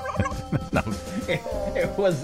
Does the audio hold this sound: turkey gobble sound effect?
yes